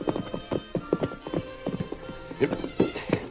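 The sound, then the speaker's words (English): Horses' hooves clip-clop in a steady, uneven rhythm of sharp knocks, several animals walking together, as the masked man and Tonto halt their horses by railroad tracks in pine woods at sunset, with the hoofbeats continuing through to the end. “We'll leave the horses here.”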